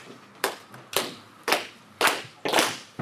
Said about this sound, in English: So the first one I'm going to sing from the Hooting Yard songbook, it will be an unaccompanied rustic lesson. Right, I don't know if any of you are familiar with it, but we'll give it a go. And I'm going to ask you to clap along as well, so...